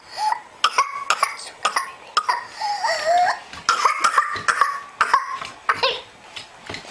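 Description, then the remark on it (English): A rapid, relentless run of harsh coughs in a loud pertussis (whooping cough) fit, broken by high-pitched, drawn-in whooping breaths between bursts. No talking. “patients will have a whooping sound after the coughing fit when the patient is finally able to inspire and take a breath”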